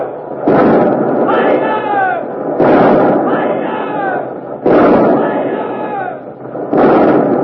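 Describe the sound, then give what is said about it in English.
The port broadside of the warship Revenge, her 60-, 30-, 18- and 9-pounder guns, fires at the Armada at point-blank range in four loud, booming volleys about two seconds apart, each blast trailing off in a rumbling roar, with shouting voices mixed into the din. “the Revenge is dropping, turning broadside, showing her port guns to the Armada, the 60-pounders, the 30s, the 18s, the 9s. You'll hear all of them in a moment.”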